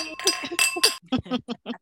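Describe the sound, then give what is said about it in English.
Several quick clinks of glasses ring out in a toast, their bright tones lingering, followed by a voice repeating short syllables in rhythm, as if mimicking the clinks. “Clink, clink, clink, clink, clink, clink.”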